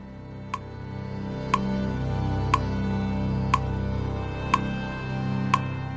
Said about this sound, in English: When we come back, the clock begins ticking,